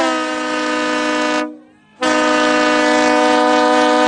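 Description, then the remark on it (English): A loud train horn blasts twice, a long sustained chord broken by a brief half-second gap before sounding again, with no voices present. “But, hey, Dawn, we had another torrent, so we better blow that train horn.”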